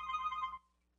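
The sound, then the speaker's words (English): A telephone rings once in a short, steady electronic burst lasting about half a second, as a call comes in for the speaker's father, then cuts off abruptly into near silence. No one speaks. “But, my father getting a phone call.”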